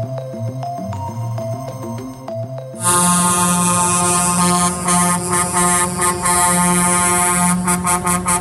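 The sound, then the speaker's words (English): A truck horn, the constant horn beeping heard in Ottawa, Canada, blares loud and unbroken after a quieter tonal stretch, holding a harsh, buzzy pitch for several seconds before breaking into a few short honks at the end. “The sweet sound of a constant horn beeping.”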